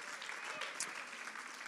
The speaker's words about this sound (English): Oh, let's clap our hands and magnify the Lord in this house today.